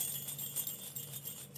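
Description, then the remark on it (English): Small bells jingle steadily in a soft, continuous shimmer, fairly quiet and bright, with no voices over the tinkling. “I know you'll probably add more bells in later, but let's”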